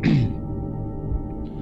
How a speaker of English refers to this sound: Oh, sorry, I had to clear my throat.